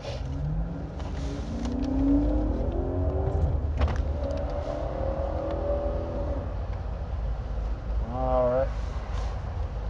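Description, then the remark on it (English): A car engine rumbles steadily throughout as the car goes through a toll booth, with a low, continuous drone and some brief rising tones, while muffled voices murmur faintly over it. “I'm going through a toll booth.”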